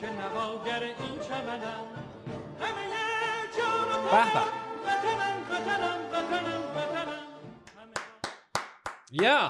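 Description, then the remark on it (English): A stretch of tuneful, voice-like music gives way to a quick burst of about six sharp handclaps, loud and crisp, with a steady, slightly accelerating rhythm at the very end. “Clap.”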